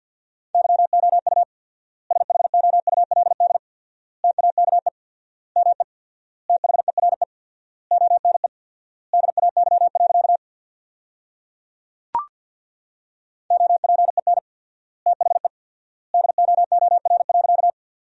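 Fast Morse code at 50 words per minute with 4x word spacing, sending sentences built from the top 300 words, in a steady mid-pitched beep, keyed into quick clusters of dots and dashes separated by long pauses between words, with a single sharp click partway through and no talking.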